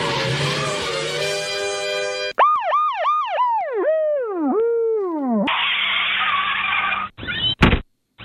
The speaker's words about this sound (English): On the way to the scene, the sirens will make it hard for you to hear me.